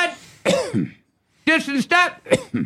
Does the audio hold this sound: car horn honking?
no